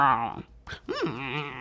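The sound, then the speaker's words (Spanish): A person imitates dogs in an apartment whining in the morning to be taken out: high, nasal whimpers rising and falling in pitch, two drawn-out cries separated by a brief pause, fairly loud. “Hasta que los perros empiezan...”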